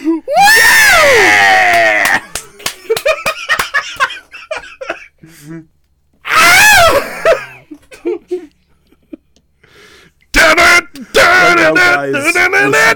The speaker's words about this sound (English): I hear him scream. I don't know. I assume something's happening.